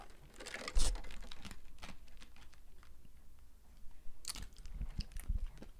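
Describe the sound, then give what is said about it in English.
Crunching of someone chewing ice, with sharp, irregular bites clustered near the start and again toward the end, separated by a quieter stretch of soft mouth noises. “My tooth hurt, and I got ice. I almost spit it out because I don't want to chew it because I'll go, oh, you know?”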